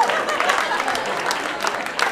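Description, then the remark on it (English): Steady applause from an audience, a dense wash of many hands clapping at an even, fairly loud level throughout, with no one speaking over it. “White people, have a round of applause for white people.”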